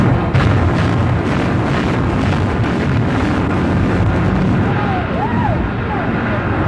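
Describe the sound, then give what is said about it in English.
A building demolition blast unleashes a loud, continuous roar of deep rumbling as windows shatter and a dust cloud rises, with sharp crackling bursts in the opening seconds and faint wavering tones surfacing near the end. “We heard shattering. We saw windows starting to pop a little bit.”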